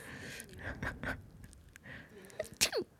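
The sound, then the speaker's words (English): A small, stifled sneeze bursts out sharply near the end after a soft breathy buildup, brief against a quiet background. “Like, to me, sneezes are satisfying.”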